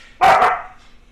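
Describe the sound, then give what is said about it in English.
A dog barks once, a loud, sharp double-edged woof, fading quickly into a quiet background with no one talking. “Thank you, dogs.”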